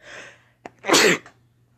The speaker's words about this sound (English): Or never mind. I gotta sneeze. That was a good old sneeze there, pal. That was a good sneeze.